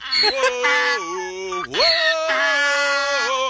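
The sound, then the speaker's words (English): A donkey sings along as a man sings, braying in one long, loud, strained call that wavers in pitch and dips sharply midway. It then rises into a second sustained, nasal stretch before cutting off. “Here comes the donkey.”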